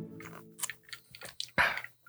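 Mouth sounds of someone sipping whiskey: a few soft slurps and wet clicks, then a louder gulp-like burst near the end, quiet overall with no talking.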